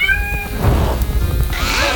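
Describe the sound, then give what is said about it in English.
Jasper, a performing cat being trained to jump through a hoop in a show act and left with burned fur, lets out a drawn-out, strained meow, then a second rising, wailing cry near the end, both loud over a steady low rumble of background noise. “Through the hoop, Jasper. Not on it.”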